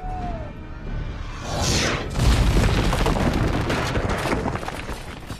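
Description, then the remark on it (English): A short falling whistle and a rushing whoosh lead into a loud cannon blast, fired during the Black Pearl's attack on the town, that bursts through a jail cell wall, followed by several seconds of heavy rumbling and crumbling debris. “It ultimately ends up blasting a cannon through the jail cell of the prisoners that are next to him, and they end up escaping.”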